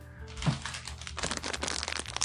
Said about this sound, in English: Are you fucking crinkling a bag? Yeah. Knock it off. Are you serious? You're giving me shit about creating in-house noise? So loud.